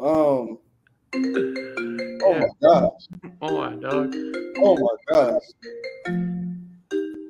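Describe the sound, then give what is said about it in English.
A mobile phone rings with a stepped electronic melody of steady tones, playing throughout while a person talks excitedly over it. “That's the first time I ever seen this man phone ring and he starts smiling.”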